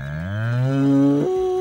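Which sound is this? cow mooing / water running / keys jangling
cow mooing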